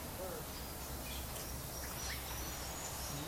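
Soft, steady ambient hiss of an aviary, with a few faint bird chirps and short calls scattered through it. No one speaks clearly.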